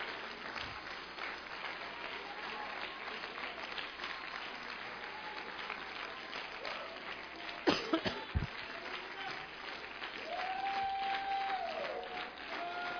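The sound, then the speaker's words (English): An audience claps hands steadily for several seconds when a preacher calls on them to clap in Jesus' name, a dense wash of applause with a few louder individual claps and faint voices mixed in toward the end. “Now clap your hands right now in Jesus' name.”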